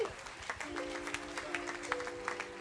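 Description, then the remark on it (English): A church audience gives the Lord a clap offering, breaking into steady, dense applause with many hands clapping at once and a sustained organ-like tone humming underneath. “Give the Lord a clap offering some.”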